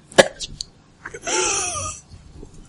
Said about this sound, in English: And that's it. He breathes no longer. It was a little coughing.